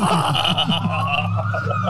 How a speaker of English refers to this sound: it's good for the ambience, though. Yeah. As if we didn't have enough background. It's ambulance, noise. Not ambience.